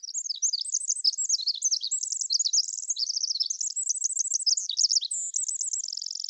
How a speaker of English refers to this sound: our Pacific wrens sing more than twice as fast, a full 36 notes per second. Our human ears cannot resolve such rapidly delivered notes, making some of the tinkling notes into what we perceive as a buzz.